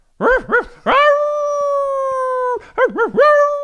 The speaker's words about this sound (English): It's dogs that go outside and bark for no reason. I'm talking about dogs that go out, as soon as they go out the door, they just start.